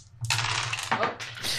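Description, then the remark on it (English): A handful of dice clatter onto a hard floor in a quick burst of bright rattling impacts that tumble and skitter for a second or so before settling. “Well, I threw a bunch of dice on the floor.”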